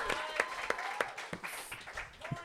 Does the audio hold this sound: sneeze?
no